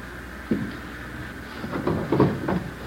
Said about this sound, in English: scatter things around, make it look as much like a burglary as you can. Yeah. Same here in the living room. Desk drawer, table, cupboards. Turn them inside out, throw things around.